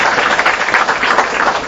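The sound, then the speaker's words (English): A crowd applauds steadily for Professor Sushma Yadav, many hands clapping in a dense, even patter that stays loud and sustained throughout, with no voices rising above it. “Without wasting any more time, so let me again request all of you to give a big round of applause to Professor Sushma Yadav.”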